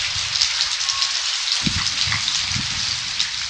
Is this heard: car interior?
no